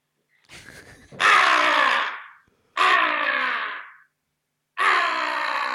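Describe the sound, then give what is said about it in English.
Hunting calls imitate a crow and a squealing rabbit: a faint raspy start, then three loud, harsh, drawn-out squalling bursts with short silences between them, no talking. “Okay, you can do the squealing. Let's hear. Rabbit. I'll do my crow.”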